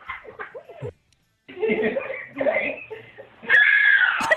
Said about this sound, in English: It's even louder the second time. I don't know why I scream. It's just surprising to me how strong she is and how she just lays me out, lays me over.